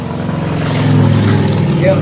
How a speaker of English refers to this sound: Hell's Angels ride past. Damn. Hell's Angels and shit. These motorcycles are haunting me, man.